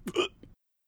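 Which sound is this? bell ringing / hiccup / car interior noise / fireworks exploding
hiccup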